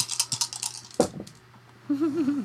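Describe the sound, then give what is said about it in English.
Six six-sided dice are thrown across a hard surface for an acrobatics check in a quick burst of sharp clicks, one louder clack, then scattered rattling settling. A brief voice follows at the end. “Yeah, let me throw almost all of my d6 at this.”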